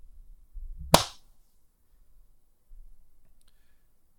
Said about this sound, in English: we are back. I'm going to clap again.